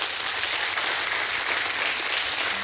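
An audience gives God a hand clap of praise, sustained applause, a dense, steady wash of many hands at an even level throughout, with no voices standing out.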